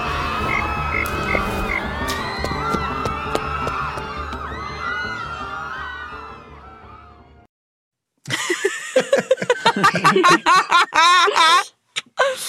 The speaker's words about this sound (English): Frog! Perfect. Back in the pocket you go.